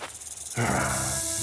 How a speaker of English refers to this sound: There you go, little snake. Oh, yes, yeah, slither on along. Yes, yeah, slither along.